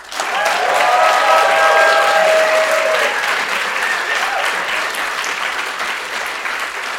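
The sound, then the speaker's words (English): Sustained applause from a crowd welcoming guest Paul Haenle, steady and loud for several seconds with a few voices calling out near the start, then gradually thinning toward the end. “Let's give a big round of applause to Paul.”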